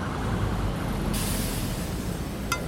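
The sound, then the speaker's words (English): Busy street traffic at Market Street and 5th rumbles steadily, then a loud hiss of air brakes bursts in partway through, followed by a brief sharp squeak near the end. “I shrugged back at them and stepped out, finding myself in the middle of traffic at Market 5th.”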